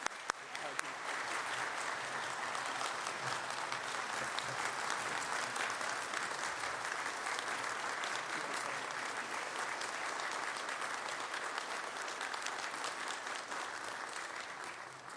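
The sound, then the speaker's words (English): An audience breaks into sustained applause for a worship leader's contribution, a dense, steady patter of many hands clapping at an even loudness for the whole stretch, with no voices standing out above it. “And so if you would join me in applauding her contribution.”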